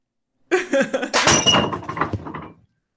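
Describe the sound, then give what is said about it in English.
The end of a curtain rail falls off on its own and smashes a cat's food bowl on the floor beneath it, splitting it in half: a sudden loud clatter and crash with bright ringing shards and a scattering rattle that trails off after about two seconds. “The end of my curtain rail just fell off on its own and smashed the food bowl for my cat on the floor beneath it, just split it in half.”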